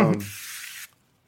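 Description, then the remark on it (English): A single short hiss of a scented aerosol spray, fairly loud, lasting just over half a second after a brief low tonal sound, followed by a faint click. “got the spray.”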